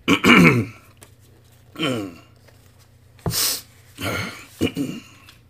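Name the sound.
throat clearing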